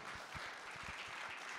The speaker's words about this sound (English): By the way, shout out to all the praying moms. If you're a praying mom, can we clap and give it up for all the praying moms?